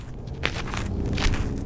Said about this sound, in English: This is me walking right through the middle of the river in downtown Tucson. It's just dry sand, no water. That's me kicking some trash. There's a lot of trash in the riverbed, like soda cans, plastic bags, maybe even a shoe or a grocery cart.